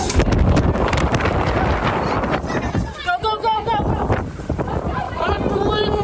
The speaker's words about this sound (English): They reach the restaurant door but find they can't escape. I can't get this door open. The 110-mile-an-hour wind gusts bear down on the restaurant door, trapping them inside.